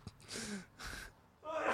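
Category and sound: human body sound, sneeze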